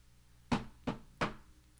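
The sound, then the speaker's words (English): Three sharp knocks made by slapping an orange, evenly spaced about a third of a second apart, fairly loud against a quiet background with no talking. “will you knock on something? And listener, if Dillon is in your home and you hear a knock, this is how you'll know”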